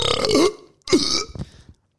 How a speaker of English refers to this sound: Bring back the burps. Oh, that was great.